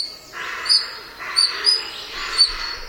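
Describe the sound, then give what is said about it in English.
A pair of European otters (Lutra lutra) in wetlands of Northumberland, England, giving thin, high-pitched squeaking calls, several short bird-like chirps at irregular intervals over a steady soft rushing background, moderately loud. “Now, these high-pitched squeaks might sound like birds, but they're actually the calls of a pair of otters The European otter, or Lutra lutra, is an endangered species in Britain, mainly due to wetland drainage and water pollution.”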